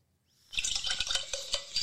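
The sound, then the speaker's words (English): Liquid splashes and swirls in a glass, with quick clinks and taps as a whole cupful is poured and a drink is mixed, steady and fairly loud after a brief silent start. “I poured a whole cup. I'm making a whole drink right now for me and my man.”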